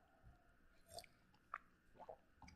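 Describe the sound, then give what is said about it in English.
Someone quietly sips water, with a few soft, wet slurps and swallows spaced about half a second apart. No one speaks. “And to a certain extent, I think I'm going to take a sip of water.”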